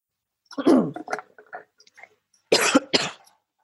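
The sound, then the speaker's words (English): A person with a frog in the throat after lunch: a raspy throat clearing rumbles, followed by two sharp, loud coughs in quick succession, with no talking. “And then when I do that, then I always end up getting coughs and have a frog in my throat.”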